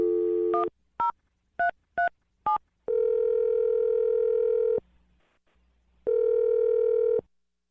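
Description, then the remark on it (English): A steady dial tone breaks off into four quick touch-tone beeps, then a long ringback tone, a pause, and another ring, clear with no voices. “I'm going to dial Turtle's number here, and you can make your Awkward Tuesday phone call”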